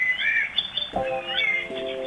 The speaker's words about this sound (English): put a little circuit in his belly, which when you bring his wings together, allows him to tweet his song